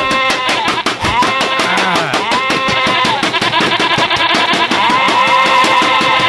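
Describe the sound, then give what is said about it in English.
Sheep bleats from Notch, who has just turned into a sheep, rise over a dense, rapid clicking rhythm that runs throughout. The whole mix is loud and busy, with no one talking. “Oh, and he just turned into a sheep.”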